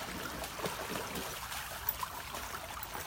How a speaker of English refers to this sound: Look at the stream and notice the sunlight sparkling on the water. Listen to the sound the water makes as it tumbles over the stones, the little rocks.